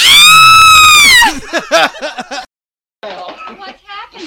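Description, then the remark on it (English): A person lets out a loud, sustained, high-pitched mock scream lasting just over a second, then breaks into quick, animated talking with a short pause partway through. “Wait, can you do the scream?”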